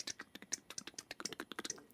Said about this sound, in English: That's the fingers typing on the keyboard.